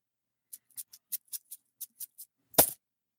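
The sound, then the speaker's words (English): Coins jingle in a bag as it is brought out: about nine light, sharp metallic clinks in a quick, uneven rhythm, then one louder, fuller rattle near the end. Fairly quiet, with no voices. “Alrighty, so we're going to go ahead and get out that bag of coins here so we can figure out what we're doing next.”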